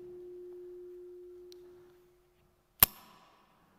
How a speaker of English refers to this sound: It's the clip of the carabiner. Because that is the point of connection where me in the sea of sin can get hoisted up by my able assistant.